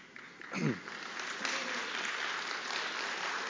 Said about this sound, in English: I wasn't looking for applause, but I came to Catawba in my 40s.